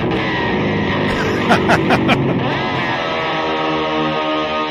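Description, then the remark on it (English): A clean electric guitar, played without distortion, rings out with sustained, shimmering chords, broken by a few quick rhythmic strums midway, steady in level with no vocals. “And this is without distortion.”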